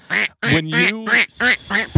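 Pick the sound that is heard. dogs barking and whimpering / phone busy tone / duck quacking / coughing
duck quacking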